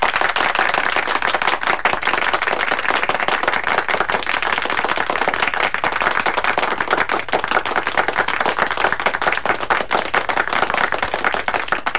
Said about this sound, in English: Yeah, that was good, wasn't it? Yeah. Very nice. That was an impromptu round of applause. Yeah. I wasn't forced to do it in any way. It went on a little bit too long. Nah, perfect. I thought it was the perfect length.